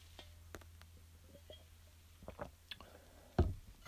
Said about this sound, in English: First, I need a sip of water.